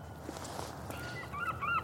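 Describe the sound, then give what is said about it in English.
A few short, squawking seagull calls ring out near the end, clear above a steady outdoor rumble in sunny woodland well inland, with no one speaking. “That's an intrepid seagull.”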